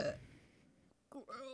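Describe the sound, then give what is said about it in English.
A voice makes a mock retching noise meant to imitate vomiting that comes out more like a burp: a short, guttural gag followed by a drawn-out, groaning voiced tail. “That was supposed to be vomit, not a burp.”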